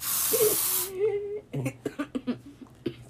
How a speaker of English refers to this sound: Don't spray that at me.